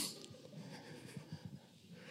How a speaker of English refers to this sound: Excuse me, I'm just a little sick. If you hear a little snuffles. It's not me crying.